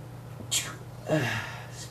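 sneeze

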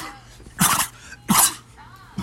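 coughing

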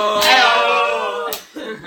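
hands slapping

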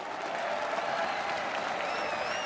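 round of applause

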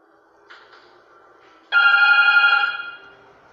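telephone ringing

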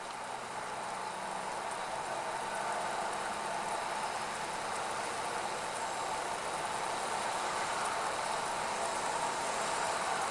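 car engine idling

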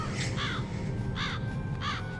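raven cawing

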